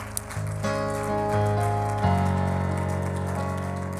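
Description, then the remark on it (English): A church audience claps their hands to the Lord steadily in a dense, rain-like patter while sustained organ or keyboard chords play underneath, shifting harmony a few times. “Clap your hands to the Lord one more time before you're seated tonight.”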